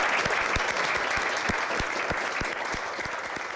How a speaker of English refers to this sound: And one more thing, just to say thanks to our awesome panel for this morning. So if you can just give them a round of applause.